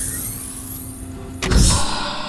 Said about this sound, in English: She waited a moment more, and without anything else to do, she tapped the green dot. She felt a warm sensation on her fingertip. The chamber door immediately opened.